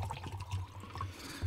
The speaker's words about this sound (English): Excuse me while I used to, I remember back when you could say, "Excuse me while I get a drink of water."